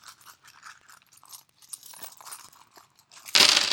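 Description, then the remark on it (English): Light metallic clinks and rustling build for a few seconds, then a loud, dense rush of coins spills out all at once, jingling and clattering together as they're emptied from a sock. “You actually do have some nickels in here, Travis, you little liar.”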